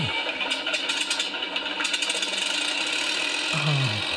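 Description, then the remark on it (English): Engine number three of a Lancaster aircraft, the engine that drives the hydraulics, starting up at East Kirkby: loud rattling, clattering cranking noise, then a deeper rising roar near the end as it catches. “The sound of engine number 3 of a... Engine number 3 does the hydraulics.”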